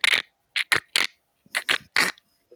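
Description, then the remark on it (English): A hand-cranked randomizer is wound up: about seven short, gritty ratcheting bursts in uneven succession, fairly loud, with no talking. “So I've just got to wind it up a bit.”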